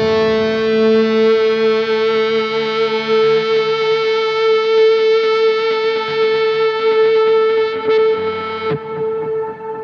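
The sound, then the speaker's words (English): A loud, steady electric guitar feedback tone, with the guitar output going to a profiler, drones for nearly nine seconds, humming with distortion and a reverb wash, then cuts off abruptly near the end. No one speaks. “And I'm trying to have that feedback.”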